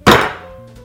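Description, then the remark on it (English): One loud thud as a knife is banged down through a tough kabocha squash onto a board, with a short ringing decay afterward and no talking. “So I'm just gonna give it a really big bang so that it can go right through.”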